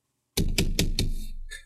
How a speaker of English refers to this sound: I'm guessing that was more banging on the head because it's the only logical... No, that was typing.